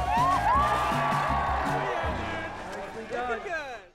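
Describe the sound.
A crowd cheers steadily at a pond skimming event, where people skim across a frosty pond to celebrate the end of the year, with many overlapping voices, rising whoops and high shouts cutting through the din. The loud, continuous roar eases slightly toward the end.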